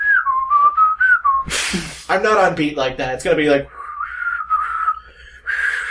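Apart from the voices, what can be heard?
person whistling a tune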